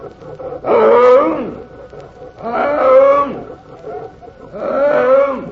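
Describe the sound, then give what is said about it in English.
A man's voice imitates a tiger's roar as a hunger cry three times, each a loud, drawn-out growling bellow about a second long, separated by brief pauses. “Hear my hunger cry, my tiger hunger cry?”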